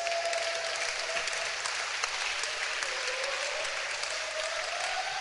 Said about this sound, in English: Clap your hands for your pastor.